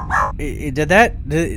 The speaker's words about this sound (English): What is that? A robot dog? Looks like we've got a dog in this universe.